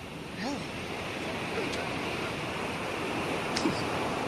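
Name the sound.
ocean waves and surf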